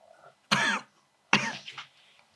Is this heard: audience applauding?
no